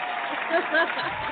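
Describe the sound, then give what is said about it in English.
A burst of audience applause after a joke, a dense, steady patter of many hands clapping at moderate loudness, with a few voices mingled in and swelling slightly midway through. “She should get no applause for that shit.”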